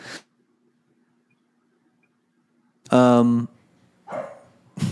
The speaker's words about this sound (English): Let me see here. I got my dog barking in the side of the pod here.